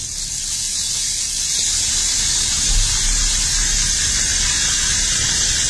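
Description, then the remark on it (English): A rain stick being flipped, its beads pouring in a steady, bright rushing hiss that holds at an even level for several seconds with no voices over it. “And Stephanie Searcy from Russell, Manitoba ended up texting in rain stick, and that is correct, Stephanie.”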